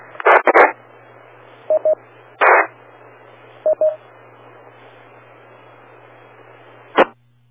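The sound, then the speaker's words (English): Short bursts of electronic DTMF tones come over a radio channel from a radio with WIRES mode turned on: a pair of quick beeps, then two more paired tones, separated by static-filled pauses and brief noise bursts, ending in a squelch tail. “It sounds like you might have the wires mode turned on your radio.”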